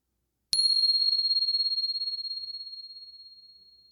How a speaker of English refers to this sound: So just settling in. And here comes the bell.